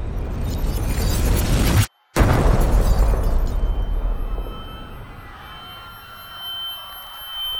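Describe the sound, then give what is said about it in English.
A massive explosion in a stadium erupts in a loud, roaring blast with a brief cut near the start, then trails off into a long, rumbling decay that fades gradually. No voices are heard. “There is a massive explosion somewhere in the stadium.”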